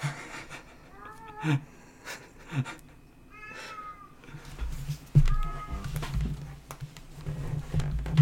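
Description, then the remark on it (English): A cat meows and yowls repeatedly in drawn-out, wavering cries, with short pauses between calls and a low rumbling background that grows louder toward the end. “Yeah, cat's going crazy.”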